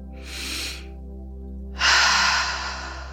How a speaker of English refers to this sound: And we'll start with the physiological sigh. This is a breathing technique where you'll breathe in twice through the nose and exhale out the mouth. It goes like this.